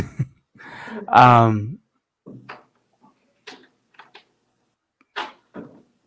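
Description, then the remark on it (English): A door opens and shuts. A short, loud creaking squeal is followed by a scattered series of light clicks and knocks, with quiet gaps between them. “Someone was at my door.”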